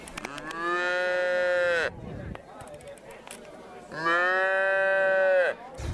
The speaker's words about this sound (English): Why are there suddenly a lot of cows on campus? I think the faculty is fine. Why are you being so mean? I mean actual cows.